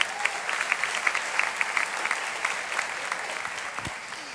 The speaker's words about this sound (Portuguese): Eu louvo o nome do Senhor, o meu Deus, pela vida da Igreja do Recreio. Você pode dizer aleluia? Aplauda ao Senhor por esta igreja.